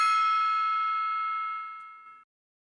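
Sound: gong being struck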